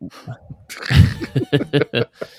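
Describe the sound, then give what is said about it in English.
A loud, raspy cough from a tickle in the throat bursts out, followed by a few shorter, rhythmic voiced bursts in quick succession. “So, I had a cough.”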